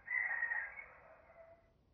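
A single rooster crows once outdoors, a drawn-out call that starts strong and trails off over about two seconds. No one speaks.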